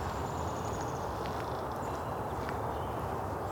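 A tree creaks faintly with a thin, drawn-out squeak and a few short woody clicks, set against a steady outdoor hiss with occasional faint bird notes.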